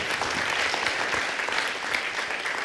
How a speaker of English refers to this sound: Come on, give the Lord a clap offering of praise.